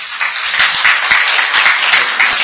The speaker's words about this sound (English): Well, if you need that clap, so what did you need? 2 hands.